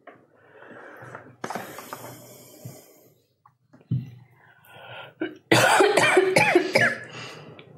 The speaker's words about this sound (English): almost like a cough. It's dusty in here, okay? It's dusty.